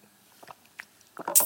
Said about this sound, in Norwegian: Men først skal jeg drikke vann.